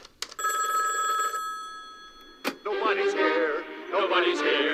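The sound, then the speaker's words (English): A telephone rings once as Homer calls Barney from jail, a bright, buzzing trill lasting about a second, followed by a sharp click and then loud, warbling voice-like sounds filling the rest. “I just wasted my phone call on your stupid...”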